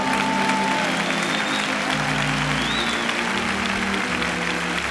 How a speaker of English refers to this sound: Oh, come on, give him a clap offering.